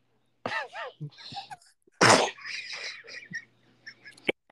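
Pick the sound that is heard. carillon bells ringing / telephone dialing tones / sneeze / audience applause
sneeze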